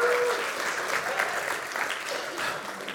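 An audience claps in a steady round of applause, a dense crackle of many hands holding fairly even in loudness for a few seconds before easing slightly.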